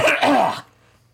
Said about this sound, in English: I have to cough here for a second.